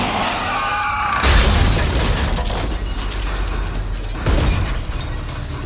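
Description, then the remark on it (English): A car is sideswiped by a pickup truck and run off the road in Southeast Missouri: a sudden loud smashing impact, then sustained rumbling, grinding noise and a second heavy jolt a few seconds later. No one speaks. “Car sideswiped us. Ran us off the road.”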